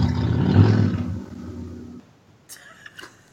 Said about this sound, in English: Did somebody just growl? I think it was a car.